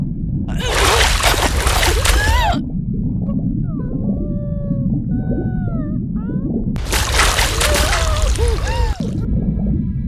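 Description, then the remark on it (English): A boat capsizes in the ocean swell and a person falls into the water: two loud, roaring bursts of splashing, churning water, a few seconds apart, over a constant low rumble, with eerie gliding whistle-like calls sounding in between. “Weightless. Panic. Kick. I'm in the water.”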